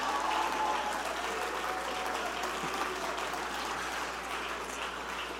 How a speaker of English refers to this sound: Oh, I wish you'd clap your hands and shout. I wish somebody would shout for the victory. Shout for the victory.